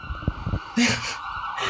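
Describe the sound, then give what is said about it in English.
An emergency vehicle siren wails steadily in the background, a sustained high tone over low rumbling traffic, with brief bits of talking at the start. “I'll wait for the sirens to pass.”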